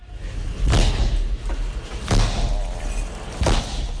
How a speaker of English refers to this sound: It's gone. Oh, God. I smashed your windscreen